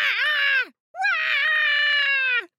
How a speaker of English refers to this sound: And the baby was yelling as loudly as possible. Wah! Wah!